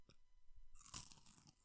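A crisp, loud crunch as someone bites into a Sonho de Valsa, a tall bulbous chocolate bar with wafer and peanuts, followed by a burst of brittle crackling and chewing, with no talking.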